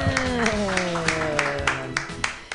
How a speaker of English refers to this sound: All right, clap your hands wildly, everybody